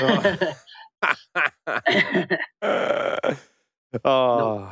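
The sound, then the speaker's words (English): A man, one of the speaker's mates, fakes snoring, making a series of short, rough grunting snorts and drawn-out throaty rasps separated by brief pauses, ending in a longer groaning exhale. “One of my mates is here and he's just pretending to snore.”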